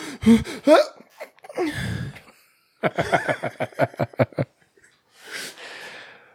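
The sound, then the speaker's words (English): A voice imitates an uncle's exaggerated cartoon-like sneeze, with rising gasping 'ah' sounds building to a loud, breathy burst, followed by a run of rhythmic laughter and a final breathy exhale. “My uncle used to sneeze. He was like one of those cartoon sneezes.”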